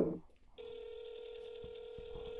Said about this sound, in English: Please say your name after the tone, and Google Voice will try to connect you.